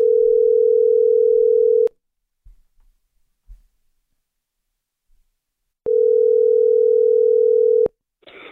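An outgoing phone call's ringing tone: two steady, low electronic rings, each about two seconds long, separated by a long silent pause, clear and fairly loud with no one speaking.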